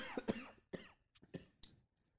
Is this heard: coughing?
yes